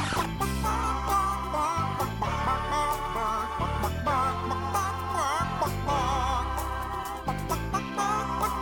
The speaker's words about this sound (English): You didn't have the chicken song?